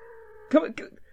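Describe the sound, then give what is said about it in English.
A single angry cat lets out a steady, drawn-out yowl that breaks into two loud, harsh snarling bursts, over in about a second. “There's just one that's really angry. Are you sure there's one? Sounds like they're all mad.”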